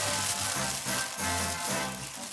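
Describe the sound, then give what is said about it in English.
Continuous crinkly rustling of tissue paper being pulled apart as a gift, a tote bag, is unwrapped: a dense, papery hiss that swells and eases in uneven bursts, with no voices. “I thought it was going to be Mr. Spock as she was unwrapping it.”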